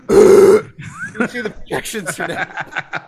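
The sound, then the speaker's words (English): A loud, exaggerated burp lasting about half a second, made by a voice imitating the sound, followed immediately by animated talking and chuckling. “You do the Frank like volcano burp”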